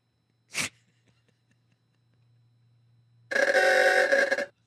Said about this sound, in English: And get a new horn. Get a new horn. It's 2023. There's no reason for the car to sound like that.